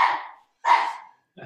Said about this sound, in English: Sorry about that. It's my obnoxious dog. Somebody must be walking past my apartment.